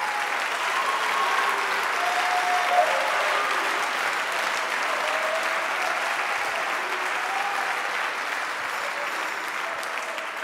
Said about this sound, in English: He's alive. He's alive. Oh, somebody clap your hands unto him.